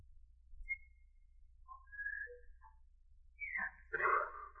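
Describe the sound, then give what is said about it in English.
Someone whistles a short, halting tune of a few thin notes with gaps between them, ending in a breathier, louder burst. Moderately quiet, with a low background hum and no talking. “Oh, I wish I could whistle.”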